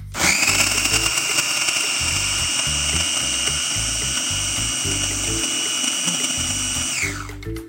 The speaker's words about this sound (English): All right, and so we're going to turn on the food processor and process just until those ingredients are combined, which shouldn't take very long, like maybe 10 seconds or so.